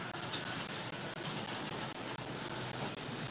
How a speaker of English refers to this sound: Had big truck going by.